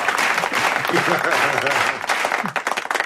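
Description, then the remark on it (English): A crowd cheers and applauds loudly and steadily for about three seconds, a dense wash of clapping with voices whooping and shouting over it, easing off briefly near the end. “Now they're cheering for you.”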